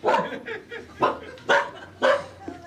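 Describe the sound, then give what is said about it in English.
A female dog named Cola barks excitedly, four sharp, loud barks spaced unevenly about half a second apart, with quieter yips and whines in between. “So let me just get her leash on. Oh, she's strong.”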